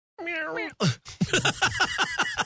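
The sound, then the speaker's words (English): A person imitates a cat, starting with a drawn-out, wavering meow, followed by a quick run of short, choppy meow-like yelps, fairly loud. “I don't know why we both went for cats.”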